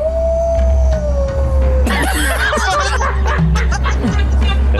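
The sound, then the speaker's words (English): A voice imitates a dinosaur howling at the moon with a long, steady, slowly falling note lasting about two seconds, followed by loud laughter and overlapping chatter from several people. “A dinosaur howling at the moon.”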